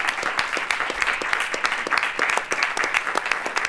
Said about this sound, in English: This is a cabinet meeting. Now there's applause in the cabinet meeting.